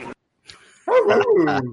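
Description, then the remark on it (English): A couple of short, close dog-like barks, the second longer and sliding downward in pitch, most likely a person imitating a dog rather than a real one. “Woof. Woof.”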